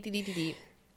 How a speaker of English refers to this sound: Bless you. Sorry.